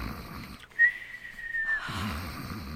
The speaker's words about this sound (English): you promised you wouldn't snore. And the minute you close your eyes, you started.